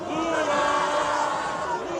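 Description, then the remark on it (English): A large crowd of Lula supporters cheers and shouts in the streets of Brazil, celebrating his election win: a dense, sustained roar of many voices at steady loudness with no pauses, with high yells rising out of the mass. “Lula supporters took to the streets to cheer on his win.”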